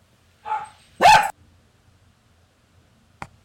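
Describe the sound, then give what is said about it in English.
A dog gives a short soft woof followed by one louder, sharper bark, then a brief faint click a couple of seconds later in an otherwise quiet room. “Oh, and my other dog is barking.”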